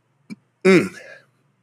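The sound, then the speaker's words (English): A loud, throaty belch lasting just over half a second, low and rumbling with a slight upward lilt, preceded by a short gulp-like catch. No talking. “and got a belch coming.”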